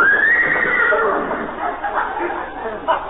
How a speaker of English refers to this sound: Oh, that's that Great Dane that belongs to the people next door. Great Dane? Sounded like a horse to me.